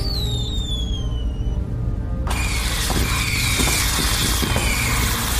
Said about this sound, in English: Let me fire up this robot. He says all kinds of patriotic stuff.